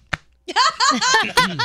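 A single sharp, fleshy slap of a hand against a stomach rings out, followed after a short pause by animated, high-pitched voices and laughter.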